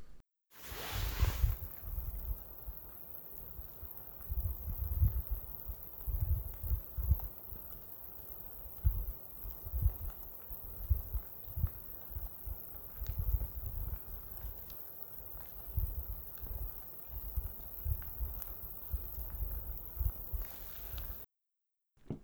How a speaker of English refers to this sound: It was so quiet, I was able to actually hear the sound of these really tiny raindrops hitting the surface of the still lake, which I actually recorded, and here it is.